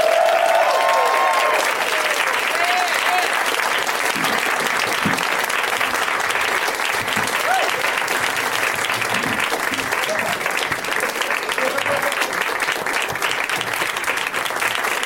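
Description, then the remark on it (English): Sustained, steady audience applause welcoming Scott Aukerman, Moshe Kasher, Kevin Allison and David Wain as they come out from backstage, a dense crackle of many hands clapping at a constant level, with faint scattered voices and a few cheers buried underneath. “It's very nice of you to keep applauding as they slowly trickle out.”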